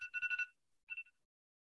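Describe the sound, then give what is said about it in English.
An electronic alarm rings in a rapid, high-pitched pulsing trill for about half a second, pauses, then gives one shorter burst. No one speaks over it. “My message to Brian Cashman. Is just alarm. Like, wake the fuck up. It's literally this.”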